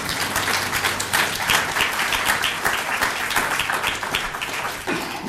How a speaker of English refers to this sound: All right, I know we don't clap, but would you clap for each other?